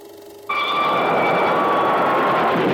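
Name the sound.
train running on rails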